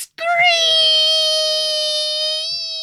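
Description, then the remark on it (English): A voice mimics the tire screech of a Camaro arriving: one loud, high, sustained squeal that holds steady for nearly three seconds before easing off slightly, with nothing else around it. “He'd be screeching on his fucking badass Camaro coming in, my Uncle Smiley, man.”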